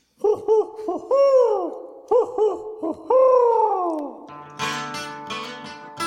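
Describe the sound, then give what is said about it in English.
An owl, up in the air with a letter in its mouth, hoots loudly in two repeated phrases of short notes followed by a long, falling hoot, ending in a burst of rustling, fluttering noise. “It's an owl with a letter in its mouth.”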